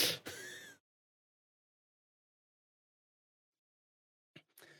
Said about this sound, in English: Yeah, sorry, I had to cough.